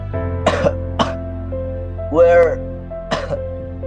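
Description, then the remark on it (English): A man coughs in a few harsh, separate bursts, one drawn out and strained, fairly loud over a steady low droning background. “Nothing seemed to help him that much, and things got worse when he coughed.”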